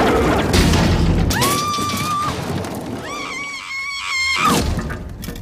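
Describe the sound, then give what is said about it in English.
Trailer window glass strains and cracks as the trailer, knocked over the side of a cliff, hangs there. It gives off two long, high, whining creaks over a steady roaring rumble, with sharp crackling bursts between them. No one speaks. “A second ago, they couldn't get the glass open. Now the slightest bit of pressure is gonna bust it?”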